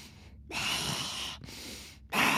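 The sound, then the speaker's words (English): Slow, deep breaths drawn in and pushed out, airy, with short silent pauses between each long inhale and exhale. No one speaks. “Deep breath in. I'm trying to tell the truth. And deep breath out.”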